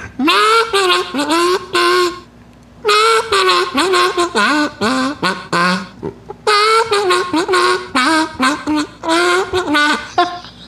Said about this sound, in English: I got a kazoo right here. Here we go. I could do a little kazoo solo.